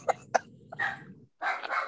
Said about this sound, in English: Oh boy, my dogs are going nuts.